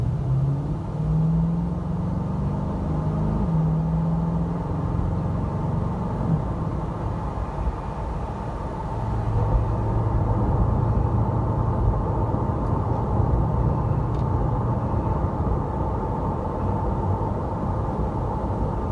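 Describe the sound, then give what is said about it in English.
A car engine rumbles steadily, then rises in pitch as it revs and accelerates away on a road through a hilly wooded area in Edmonds, settling into a continuous low drone of driving with no voices. “All right, hang on a second. Let's take a little ride.”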